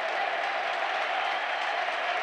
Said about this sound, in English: That is the most patronising clap ever.